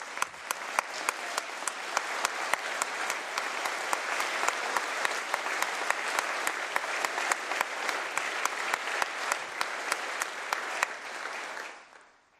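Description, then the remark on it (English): A crowd applauds steadily for about eleven seconds, dense clapping with sharp individual claps standing out, before fading quickly to quiet. “Please give a round of applause to a great family man and a hard worker”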